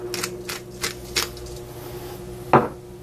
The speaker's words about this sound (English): A little bit of salt. A little bit of cracked pepper.